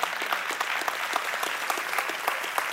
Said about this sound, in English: We don't clap just to clap. We clap as an act of worship.